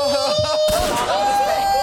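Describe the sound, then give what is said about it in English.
A loud gunshot sound effect played from a soundboard cracks suddenly partway through, its burst ringing out into a noisy tail, while a steady high tone and background hubbub continue throughout. “Let me get another gunshot.”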